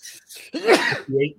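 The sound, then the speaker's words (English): A single loud sneeze: two quick breathy catches build into a sharp, noisy burst, followed by a short voiced grunt as it trails off. “Bless you,”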